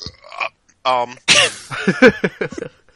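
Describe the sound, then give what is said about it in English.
A single sharp sneeze: a brief voiced inhale, then a loud burst. Murmured vocal sounds come before and after it. “Gesundheit.”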